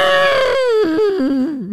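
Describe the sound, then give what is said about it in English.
A person imitates an elephant with one loud, sustained, wailing vocal call that slides steadily downward in pitch, wavering slightly near the end, with no talking around it. “That is the worst elephant impersonation I've ever seen.”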